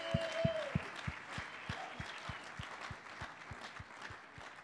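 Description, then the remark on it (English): A crowd claps steadily in a dense wash of applause to welcome two people joining the speaker, with a regular low thump keeping time underneath and a brief tone near the start. It stays at an even, moderate level throughout. “Can they please join me, and can we please welcome them with a clap of hands?”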